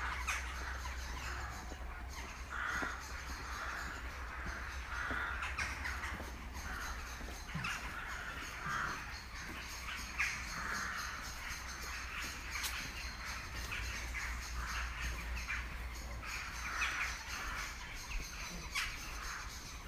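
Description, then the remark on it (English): A flock of birds calls aggressively, harsh crow-like caws overlapping almost nonstop for the whole stretch, loud, over a steady low rumble of background noise. “Birds are aggressive.”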